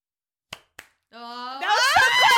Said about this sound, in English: So our eyes are closed, and then it's an intuition test. You have to clap at the same time.